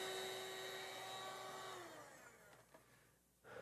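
A vacuum cleaner roars loudly with a steady high-pitched motor whine, then switches off, its pitch sliding downward as the hum winds down and fades, with a soft thump at the end.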